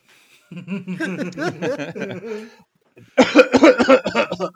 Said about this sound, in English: … falls into a coughing fit and tumbles off the worker.